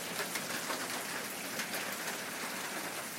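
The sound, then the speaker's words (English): Steady, heavy rain from a sudden storm pours down in a dense, continuous hiss with scattered spattering drops, no voices, holding an even loudness throughout. “That's what the storm sounds like.”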